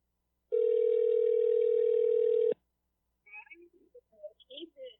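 phone call ringing tone

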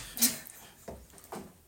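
small dog whimpering

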